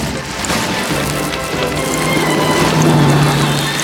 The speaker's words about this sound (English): Okay, we got hail. Hail. We got hail.